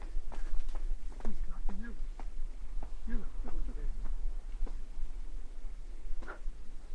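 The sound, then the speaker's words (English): Sharp, dry claps from a nightjar's wings as part of its display, about a dozen in irregular bursts over several seconds, in an amphitheatre of trees, with faint muffled voice-like murmuring in the background. “That noise is wing clapping, which is what the nightjars also do.”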